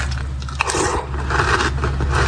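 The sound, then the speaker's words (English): Loud crunching of a mouthful of cereal that was frozen in the freezer, with brittle cracks and grinding chews continuing steadily for a couple of seconds, no talking. “I mean, just the level of crunch that we were getting there, too. Like, man, the freezer sounds like it really crunches it up.”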